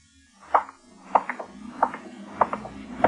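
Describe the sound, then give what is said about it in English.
Steady footsteps click on the hard pavement of a dark, deserted street, about one every half-second, each with a faint trailing echo, in an otherwise quiet outdoor setting. “My footsteps echoed in the quiet street.”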